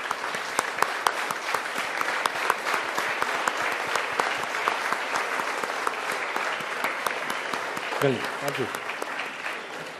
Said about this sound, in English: I forgot to say one thing, because I just saw the two lovely girls out here, and at the back, the chant that they did was so beautiful. So if you all can just stand up and applaud for them.